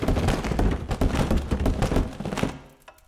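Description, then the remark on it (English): A rapid series of heavy thumps and bumps as a person tumbles end over end down a staircase, ending in a loud final thud as they hit the bottom, fading into quiet. No one speaks. “until finally he found himself at the staircase, tumbling down it, end over end, until he hit the bottom with a loud thud.”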